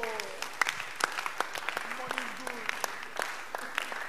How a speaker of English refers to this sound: Oh, why won't you clap your hands for Jesus?